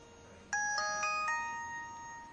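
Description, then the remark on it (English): A mobile phone ringtone plays a short electronic melody of four quick, bright notes that ring on and overlap, fairly loud, with no one talking. “He carries his cell with him all the time, ready to talk to total strangers at a moment's notice about anything.”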